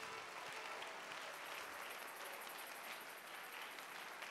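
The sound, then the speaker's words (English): A church audience bursts into sustained applause for the Lord during a sermon. It is a dense, steady wash of many hands clapping at even loudness throughout, with no voices standing out above it. “Give the Lord a clap of you.”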